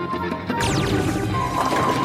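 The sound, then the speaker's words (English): A sudden loud crash of scattering impacts as a bowling ball smashes into pins at the Apex City bowling zone, where Captain Laserbeam rolls strikes for charity, with clattering and ringing tones that decay over about a second and a half against steady background noise. “We begin at the Apex City bowling zone, where Captain Laserbeam rolls strikes for charity.”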